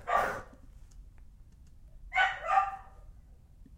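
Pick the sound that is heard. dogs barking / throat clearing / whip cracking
dogs barking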